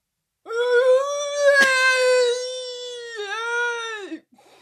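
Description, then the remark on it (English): A voice imitates a goat with one long, wavering, nasal bleat lasting several seconds, strongly harmonic and slightly quavering, ending in a few faint breathy sounds. “Imitate goes like this. Your goats.”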